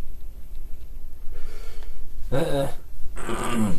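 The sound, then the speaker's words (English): Two rough, gravelly throat-clearing bursts, one right after the other, following a quiet stretch with soft breathy noise. “I can't quit clearing my throat.”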